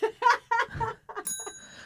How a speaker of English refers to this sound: There's that book, my ex, I'll do a half a bell for her.